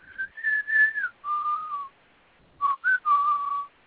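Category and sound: human body sound, person whistling a tune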